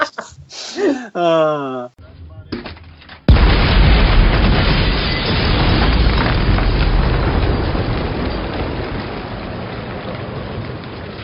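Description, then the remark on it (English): A brief voice gives way to a sudden, loud explosion of a small house during a raid in Arizona, erupting into a sustained roaring rumble with crackling debris, slowly fading over several seconds. “I should just have the clip of an explosion of that of the little house exploding.”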